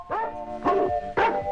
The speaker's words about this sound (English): let's splice in different dog barks at different pitches